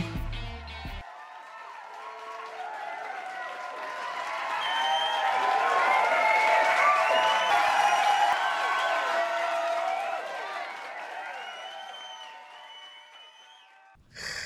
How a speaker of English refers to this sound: So a round of applause for you.